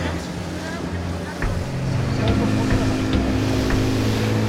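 The engine of a fishing boat about 20 feet long drones steadily as it heads out to sea, a low rumbling hum that grows slightly louder partway through, with wind and rushing water noise mixed in, as it closes in on a big commercial vessel.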